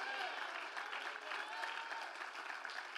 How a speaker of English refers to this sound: Somebody clap your hands and somebody shout amen.